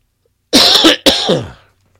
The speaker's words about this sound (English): Sorry about that. My coffee cough.